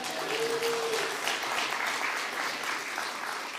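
A crowd claps steadily in a dense, continuous round of applause that holds an even level throughout, with a brief faint tone near the start and no voices.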